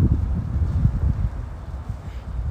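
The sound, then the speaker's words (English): A light breeze in a park on a sunny, not too chilly day buffets the microphone, making a steady low rumble with small gusts that swell and ease throughout, with no voices. “It's beautiful outside. It's a light little breeze.”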